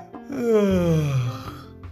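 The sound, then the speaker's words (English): A voice acts out Mr. Tickle's huge, drawn-out yawn as he sits up in bed and stretches his long arms: a loud, breathy voiced moan that slides steadily downward in pitch for over a second, then trails off into a soft exhale. “He sat up in bed, stretched his extraordinary long arms, and yawned an enormous yawn.”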